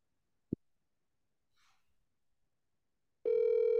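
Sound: telephone ringing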